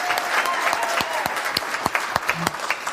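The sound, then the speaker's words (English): A church audience at Day 3 Church applauds steadily, a dense wash of many hands clapping at once, with a few sharper individual claps standing out above the sustained roar. “Really, I mean, clap like you really enjoyed it.”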